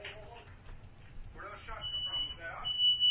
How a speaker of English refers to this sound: And that's when the fire alarm went off.